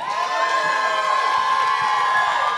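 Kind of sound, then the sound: crowd, audience applause and cheering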